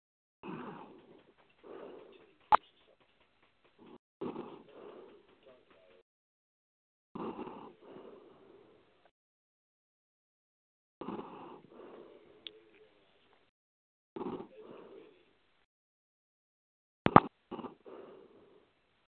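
Heavy, raspy breathing comes through a thin, muffled phone line, in rhythmic clusters of rough inhales and exhales separated by short pauses, with no talking.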